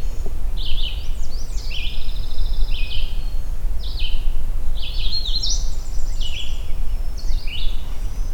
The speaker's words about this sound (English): I've never heard a red start do this kind of variation.